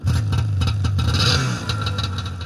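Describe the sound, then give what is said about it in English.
A small snowmobile engine, sitting exposed with no plastic covering, revs loudly, its steady low drone rising and surging with rattly, clattering bursts over about two seconds, with no voices. “There was definitely this huge sense of freedom that I got riding the snowmobile.”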